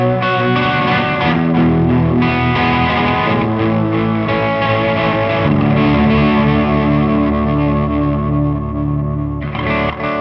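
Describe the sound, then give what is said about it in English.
A sustained, overdriven electric guitar playing layered chords through a modulation effect, with a wavering, warbling chorus-like, tape-like modulation, loud with a slight fizz coming from the amp, no voices present. “I mean, it almost goes like chorus. A little out there for me, but I like a little bit of just a little bit of modulation.”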